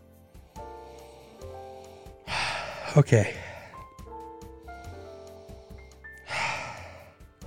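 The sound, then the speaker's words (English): Two long, breathy sniffs as someone picks up a glass of dark beer and smells it, separated by a few quiet seconds, with a single short spoken word and faint background tones. “So let's pick this bad boy up and give it a sniff.”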